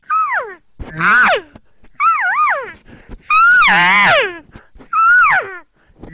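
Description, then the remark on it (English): A person imitates an elk's buzz call: five loud, nasal, wavering mews with a raspy buzzing edge, separated by short pauses, the longest and harshest call in the middle. “Now I'm starting to, when I do that buzz with a now followed up, I almost like to think of the buzz call as kind of like, listen, this is what I want.”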